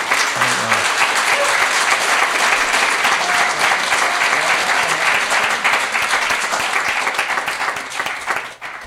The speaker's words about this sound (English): We all give a big round of applause